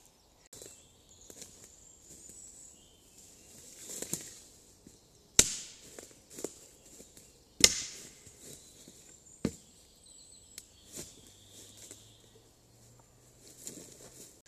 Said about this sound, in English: Oh well. At least the birds are still singing.